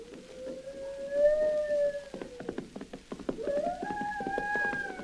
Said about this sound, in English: The sun gradually sinks below the horizon. The moon comes up. The only sound is the occasional wail of a wolf or coyote.